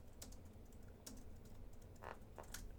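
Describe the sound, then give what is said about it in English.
Quick, uneven clicks of typing on a computer keyboard, fairly quiet, with a few sharper key strikes over a low background hum and no one speaking, as someone types to look up a composer's name. “I should have looked up the composer. I forget his name, too. Typing.”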